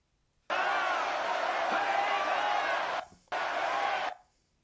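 A crowd of people in a room, shown in a played video, screaming and yelling together in a loud, sustained roar that cuts off abruptly, pauses briefly, then resumes before stopping again.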